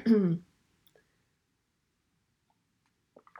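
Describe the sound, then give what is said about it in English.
A single loud cough bursts out at the very start, then fades into near silence with only a few faint, soft noises toward the end. “Excuse me, I'm about to cough.”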